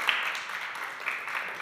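A crowd applauding a woman being introduced: a dense, steady patter of many hands clapping together at an even loudness for a couple of seconds, with no voices heard.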